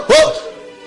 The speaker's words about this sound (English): Who let the dogs out to come and bark at a nice camp like this?